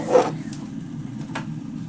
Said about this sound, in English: Okay guys, Anchor is recording my kettle boiling. Very nice.